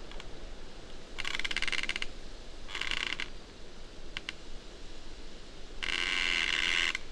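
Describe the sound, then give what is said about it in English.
Trees in a forest creak in the wind, with several drawn-out, rasping groans at irregular intervals and a couple of short squeaks, over a steady rush of wind. No one speaks. “Listen to the trees creaking in the wind.”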